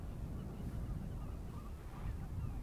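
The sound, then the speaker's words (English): Faint, distant duck calls drift across open water by a dike at the Nijkerker Nauw, a few scattered quacks barely rising above a steady low rumble of wind. No one speaks. “There's some ducks in the distance on the water.”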